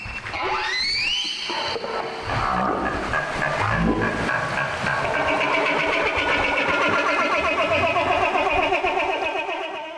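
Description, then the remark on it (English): A humpback whale social call during bubble-net feeding: a rising whooping cry gives way to loud, continuous wavering tones with a buzzy, pulsing texture, and no voices. “That was a social call from a humpback whale that's involved in a feeding behavior called bubble netting.”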